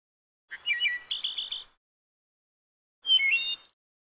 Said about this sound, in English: Bird song.